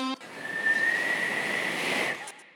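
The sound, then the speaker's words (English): A single long whistle blast, shrill and steady with a breathy, airy edge, held for about two seconds before cutting off, signalling the end of a ball game, with nothing else around it. “And the whistle.”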